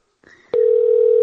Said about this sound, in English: Oh, I got a ringtone.